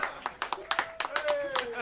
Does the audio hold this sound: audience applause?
yes